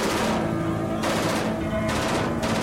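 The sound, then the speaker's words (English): Gunfire rattles in several rapid, sustained bursts separated by brief lulls, loud and continuous throughout, with no voices over it. “Stay low. We don't need a stray bullet hitting us up here.”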